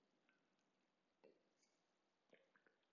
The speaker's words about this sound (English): I need a sip of water.